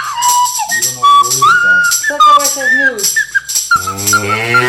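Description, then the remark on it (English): A cow moo sound effect plays from a pressed button meant for the news, a drawn-out low lowing tone mixed with bright sliding whistle-like notes and short bursts, loud throughout. “That's not news. That's a cow.”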